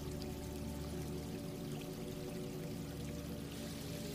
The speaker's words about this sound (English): As you continue to walk, I want you to hear that stream becoming louder as you're closer to the water.